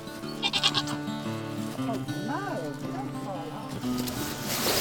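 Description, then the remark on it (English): Pygmy goats, among them one named little Mo, bleat several times on a Scottish social croft, wavering, quavering calls rising and falling in quick succession over a steady outdoor background with faint voices. “So we've got the pygmy goats, and this first one here is little Mo, and she came to live with us after she'd created chaos in Fort William.”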